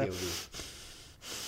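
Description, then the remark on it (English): A person breathes heavily and deeply, three long, loud, airy breaths with brief pauses between them, demonstrating breathing really deep. “No, I saw her, and I was just like, you know, breathing really deep, and then I saw her like smile kind of go down, like, and she knew that I knew already.”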